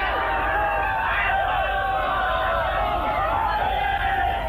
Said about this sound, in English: And the crowd are really going mad.